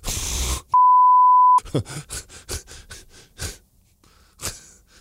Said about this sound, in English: Well, I'm glad I beeped that.